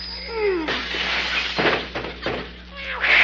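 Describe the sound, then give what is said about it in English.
A cat on a fence gives a drawn-out, wavering yowl that rises and falls for a moment, then gets cut off by a loud breaking crash and scattered clattering noise that continues to the end. “is there any way of stopping that cat out there on the fence?”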